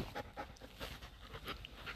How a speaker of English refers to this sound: And those are my dogs wrestling, so I'm very sorry if they are going to make a little bit of noise here.